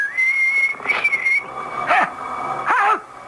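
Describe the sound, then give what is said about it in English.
A man walking along a path in the dark whistles a tune in long, steady notes for over a second, clear, followed by two short whining, whimpering cries a moment apart. “He's coming now, whistling in the dark.”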